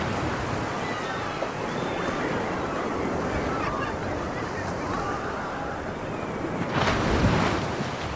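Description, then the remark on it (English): Steady surf washes against a rocky beach on Lesbos as people are helped ashore, with a louder wave crashing in near the end amid gusty wind noise and faint background voices. “As people are helped ashore on the rocky beaches of Lesbos, one passenger tells of boats following and his fear that they will not arrive because of the rocks.”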